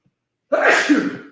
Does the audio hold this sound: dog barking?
no